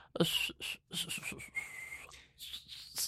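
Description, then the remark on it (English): A clear, high whistled festive tune in short phrases, with one long gliding note, fairly loud with no talking over it. “And he started to whistle a very precise, clear, festive tune.”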